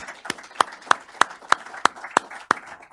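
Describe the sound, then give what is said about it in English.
A round of applause for three panelists at the close of a Heritage Foundation panel on the INF, with one set of sharp, evenly spaced claps, about three per second, standing out over a softer, continuous wash of clapping. No one speaks. “Would you guys take a moment to give these three people a round of applause?”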